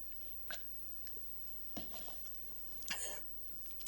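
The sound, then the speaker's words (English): Someone quietly sips water: three soft, brief slurping and swallowing sounds spaced a second or so apart, with no talking around them. “I'm going to take a little more water.”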